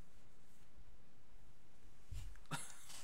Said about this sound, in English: But sorry, I had a cough.